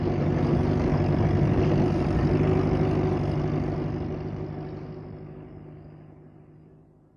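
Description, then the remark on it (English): A car engine rumbles steadily at low speed, then gradually quiets and fades away over the last few seconds as the car is parked at a lodge. No one speaks. “I thought we'd park the car at the lodge.”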